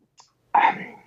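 A sip of beer from a local brewery: a tiny mouth click, then a sudden loud slurping, airy gulp that trails off over about half a second, with no talking.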